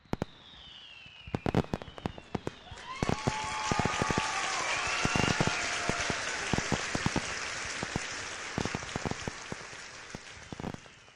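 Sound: crowd applause and cheering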